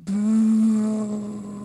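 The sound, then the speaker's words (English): An audience practises booing, one long, steady, low-pitched "booo" that holds loud and even for about a second and a half, then trails off slightly at the end. “boo. I think that was pretty good.”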